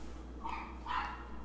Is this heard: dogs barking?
yes